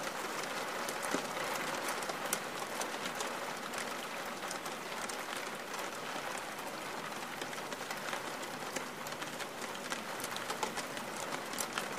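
Steady rain falls without pause, a dense hiss scattered with countless quick drop ticks. The sound stays even and moderately loud throughout, and no voices are heard.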